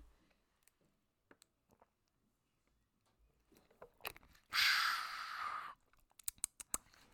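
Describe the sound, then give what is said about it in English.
Someone sips water: soft scattered mouth clicks and small swallowing noises, then a loud, airy gulp or exhale lasting about a second, followed by a quick flurry of sharp clicks. “Yeah, so I'm gonna give you guys a little 2 seconds to let today's episode sink in so I could take a sip of water.”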